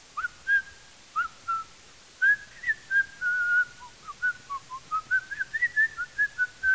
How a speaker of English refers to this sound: And it happened so often that I developed a routine. And so I would start whistling.